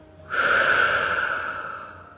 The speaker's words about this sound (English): Close your eyes. Take a deep breath in through your nose, out through your mouth. Let's do that again. Breathing all the way in, all the way out. One more time. Deep breath. Let it all go.